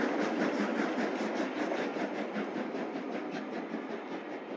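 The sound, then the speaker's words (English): The new-build steam locomotive Tornado, on the Border Raider tour from Birmingham to Carlisle, rolls through a station. It makes a loud, steady roar with a rapid, regular pulsing beat running through it from start to finish, and there are no voices. “An hour later, new-build loco Tornado would pass by on the Border Raider tour from Birmingham to Carlisle and back.”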